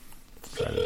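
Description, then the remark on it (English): A steady electronic ringback tone starts partway through, loud, as an outgoing phone call to a man rings, waiting to see if he answers, cut short after a fraction of a second. “Let's see if he answers now.”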